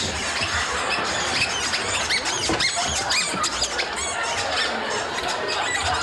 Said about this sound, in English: Which was, of course, a stampede of squeaky-shoed gentlemen.